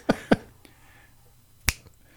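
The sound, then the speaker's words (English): An automatic cat feeder dispensing food: two sharp clacks in quick succession, a pause, then another loud clack, with a couple of faint ticks between, no voices. “My cat's auto feeder.”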